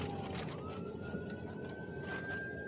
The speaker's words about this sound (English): And prayers for whoever this ambulance is going to.